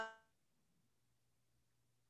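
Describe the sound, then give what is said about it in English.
A brief fragment of a remote voice cuts off abruptly after a quarter second, leaving near silence with only a faint, steady low hum, like a call connection dropping out. “Hold on, you went away.”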